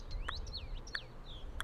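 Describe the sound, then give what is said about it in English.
Several small songbirds give thin, high whistled alarm calls with sharp, sliding notes, mixed with a few short ticking chips, moderately faint over a low background rumble, with no voices, as they mob a raven trying to steal babies or eggs from a nest. “Alarm calls from smaller songbirds tell me that Raven is trying to steal babies or eggs from a nest.”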